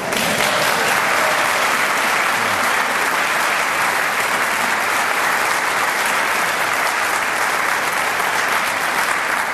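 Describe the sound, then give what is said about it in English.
A church audience in Richmond applauds a sung solo steadily for the full stretch, a dense, even wash of many hands clapping at constant loudness with no voices standing out. “I know you're not supposed to clap in church, but I bet you want to.”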